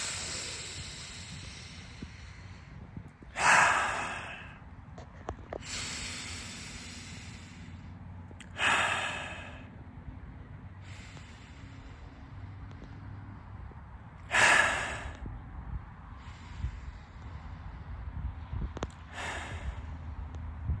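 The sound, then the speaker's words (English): Slow, deliberate, conscious breathing: about three unhurried cycles of airy inhales and louder, sighing exhales, evenly spaced over a low background hum, with no talking. “Consciously breathe. Breathe with me now.”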